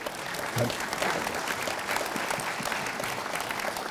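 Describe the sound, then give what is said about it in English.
An audience claps steadily for a few seconds, a dense, even patter of many hands at moderate loudness with no clear voices over it. “Feel free to applaud.”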